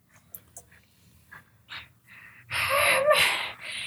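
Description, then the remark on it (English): A voice imitates the labored, wheezing breath of someone with emphysema: a few short raspy catches, then a long, loud, hissing wheeze drawn out, with no talking. “wheeze!”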